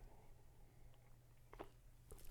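A quiet sip from a drink: a few soft, wet mouth sounds and a brief gulp near the end, over a low background hum, with no talking.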